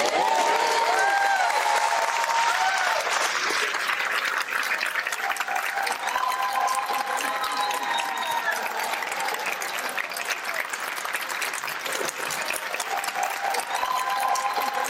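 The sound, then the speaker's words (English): A large audience claps steadily for about fifteen seconds during a guest's introduction, a dense, even roar of extended hand clapping that never fades, with a few whistles and cheers rising above it. “Before we go on, listen to how they extend the clapping.”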